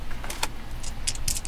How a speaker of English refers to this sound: Roll roll an attack. Give me an attack roll. Roll 3 6-sided dice.